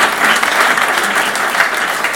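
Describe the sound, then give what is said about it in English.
Steady audience applause for a doctor fills the space, a dense wash of many hands clapping at once, sustained and fairly loud throughout without any voices standing out. “A round of applause for him as well.”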